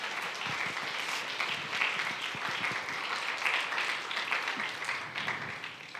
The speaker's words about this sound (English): And I remember my grandma is actually here with us today. Let's all give a hand clap to my grandma.